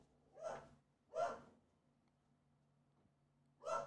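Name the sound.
dog barking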